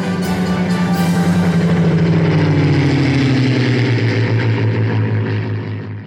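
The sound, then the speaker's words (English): A loud Merlin piston aero engine drones as a propeller plane passes by, its steady roar sliding lower in pitch as it flies past, with no voices. “And their fight was made possible by thousands of others working together to produce the Mighty Merlin and the planes it powered.”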